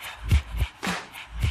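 Benny the dog panting on the radio during the Dr. Pat Show: four breathy, huffing bursts in quick succession, each with a low thump beneath a hissy rush of air, fairly loud and with no talking over them.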